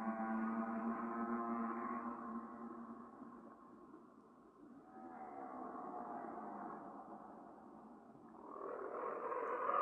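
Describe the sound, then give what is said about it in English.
Whale song: long, moaning tonal calls with slowly rising and falling pitch, arriving in three drawn-out phrases that swell and fade, with no voices. “I will leave some whale song for a few minutes so you can enjoy the cetaceans speaking directly to you.”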